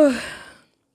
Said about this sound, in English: Yes, I had to make that yawn. And I had to smack while I did it, apparently, because that makes so much sense.